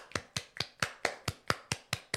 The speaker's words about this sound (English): Me giving this church clap.